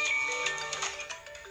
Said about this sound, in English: That's marimba. Yeah, that's one I like.